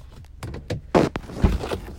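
A car door unlatches and swings open, a sharp mechanical clunk followed by a quick click, surrounded by soft rustling and shuffling as someone steps out of their car to get into another person's car.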